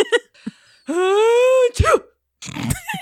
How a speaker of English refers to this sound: That was beautiful. That was an amazing sneeze. This is such a bad sneeze. No, it was a good sneeze. A good sneeze. It was a nice comical sneeze. It was great. And it was the chew that sent him over.